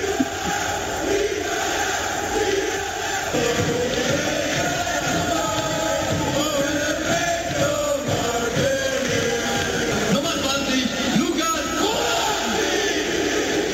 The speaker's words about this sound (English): That last one, that's the announcer saying the name of the German goal scorer and the entire crowd of 70,000 people shouting his last name in unison. I still get chills.